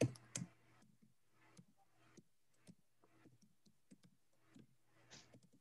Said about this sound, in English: And I'm typing right now, please access my LinkedIn profile and share the screen.